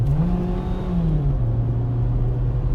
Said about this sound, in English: You guys hear my engine?